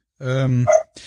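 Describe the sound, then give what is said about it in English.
A dog in another room of a house gives a drawn-out, throaty bark that rises into a sharper yelp, followed by a short breathy burst of noise, with no talking. It is apparently barking at someone walking past the house. “I can't help but hear the dog in the background.”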